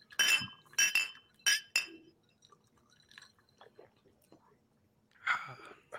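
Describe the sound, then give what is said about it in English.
Glasses clink together in a toast of "salud" among friends, one drinking whiskey with a little sparkling water: three bright, ringing taps in quick succession, then quiet murmuring voices and one more glassy rattle toward the end. “Va, salud, muchachos.”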